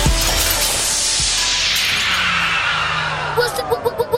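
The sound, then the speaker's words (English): Glass drops and shatters with a bright, loud crash, its shimmering shards ringing and fading over a few seconds before a quick run of short, evenly spaced clinks closes it out. “You came in there, you dropped the glass, and all of that sound of that sound good, man.”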